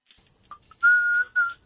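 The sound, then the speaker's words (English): A person whistles along to music: two quick chirped notes, then a long steady whistled tone and a shorter one after a brief gap, fairly clear with no voices. “No whistling. No whistling. No whistling.”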